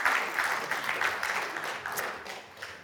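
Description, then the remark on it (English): A church audience applauds steadily for a preacher's sermon of the previous week, a dense wash of many hands clapping at once that holds for a few seconds and then gradually softens toward the end. “Give her a round of applause for the word that she brought last week.”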